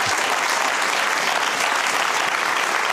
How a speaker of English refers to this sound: That's where it's going. You can applaud that.